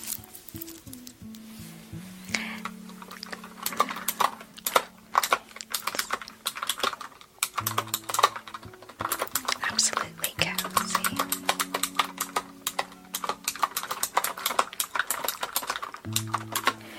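Rapid, continuous clicking and clacking of keys on a mechanical computer keyboard, with uneven bursts of typing over a low steady hum throughout.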